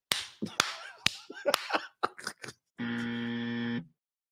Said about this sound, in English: That's all they hear when they walk in the house. What's all that clapping?